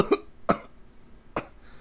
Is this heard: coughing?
yes